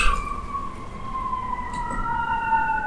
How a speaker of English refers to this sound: Every time we do a podcast, whatever topic we're on, shit goes down around here. So right now we have sirens going.